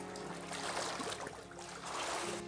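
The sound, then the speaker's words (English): Water splashes and sloshes during a baptism in a steady, churning wash that lasts a couple of seconds, dipping briefly in the middle before surging again, with no talking. “In the name of the Father and the Son and the Holy Ghost, the name above every name, we baptize you.”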